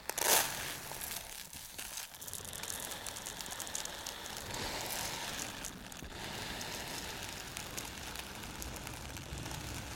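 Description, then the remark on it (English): Rice pours in a steady, dense patter of tiny grains, a continuous bright hiss that opens with a sharper burst and keeps a fairly even level throughout, with no voices. “Next up, we have rice pouring.”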